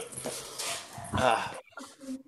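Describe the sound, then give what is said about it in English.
A dog barks in a quick series of sharp, excited bursts, its loudest yelp near the middle, before trailing off into a few softer, whiny yips. “See, I'm so happy when she leaves, the dog.”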